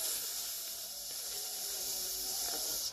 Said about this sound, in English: I'm going to let it sizzle.